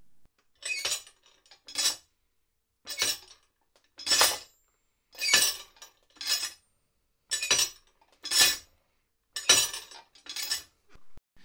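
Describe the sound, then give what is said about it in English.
A hammer worked by a floor pedal, with a chain link attached to its welded-on head, strikes a railroad spike about nine times in a steady rhythm, roughly once a second. Each blow brings a bright, metallic clink and rattle of chain. No voices. “So each time it comes up and hits the railroad spike, it makes this sound.”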